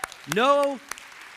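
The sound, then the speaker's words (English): An audience at an Orchard church service applauds with scattered, uneven claps, while a single voice lets out a long rising-and-falling call over the top. “Hey, we're going to clap.”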